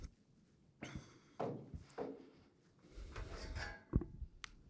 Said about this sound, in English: Let me see if I can get a chair over here. All right.